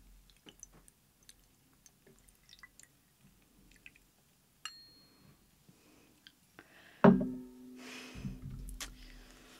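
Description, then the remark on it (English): Quiet small drips and light clicks, then a sudden clink followed by a steady pour of liquor over a spoon into a cocktail in a glass, lasting a couple of seconds, fairly loud. “I'm not that skilled yet, so I'm just gonna pour it on the spoon.”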